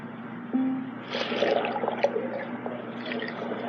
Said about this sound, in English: You dive down to the bottom of the lake.